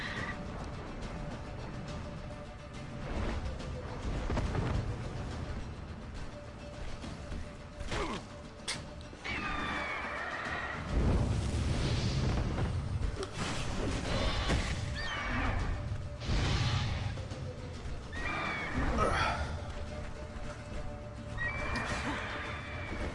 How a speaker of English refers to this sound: That's an unhappy griffin.